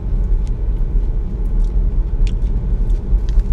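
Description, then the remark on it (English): Loud chewing of crunchy Cheetos cheese snacks: a handful of sharp, irregular crunches over a steady low rumble like a car interior, with no one talking. “I'm sorry for chewing so loudly.”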